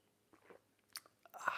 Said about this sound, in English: It's called the simultaneous sip, and I know that people all over the world are scurrying. Scurrying like happy little chipmunks to grab their vessels to join me now in the simultaneous sip. Go.